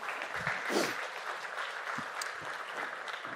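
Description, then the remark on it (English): An audience applauds together, a dense, steady wash of many hands clapping at an even, moderate loudness for a few seconds, with a few sharper individual claps standing out. “You can clap.”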